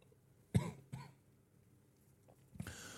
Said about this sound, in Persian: وقتی یه چیزی میخوریم، بعضی وقتا اون اشتباهی به جای اینکه بره توی مری میره توی نای و به سرفه میافتیم.